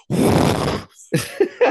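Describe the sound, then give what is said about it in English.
A person imitates the loud, forceful exhale of someone doing a gym rep: one long breathy blast lasting most of a second, followed by a few short voiced grunting sounds. “the heavy breather, the guy who, like, you know, breathes with all of his reps, like”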